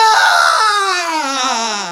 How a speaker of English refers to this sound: The ghost started up with a wild shriek of rage.